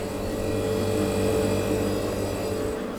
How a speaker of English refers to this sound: And this is my friend the fridge.